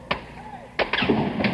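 A few sharp, booming gunshots from a sniper firing from a tower on a campus in Austin, Texas ring out at irregular intervals, four cracks in quick succession with a low rumbling murmur continuing underneath between them.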